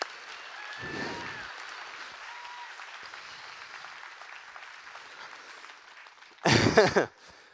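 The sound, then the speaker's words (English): An audience claps steadily, the applause holding a soft, even patter before swelling into a brief louder burst near the end. “Oh, one more round of applause so I can.”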